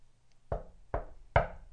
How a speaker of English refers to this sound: And there's a knock at the door late at night.